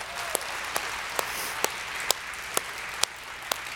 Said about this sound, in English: And so how about one more hand clap for our band?